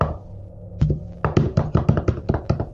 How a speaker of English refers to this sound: Yes, knock for him.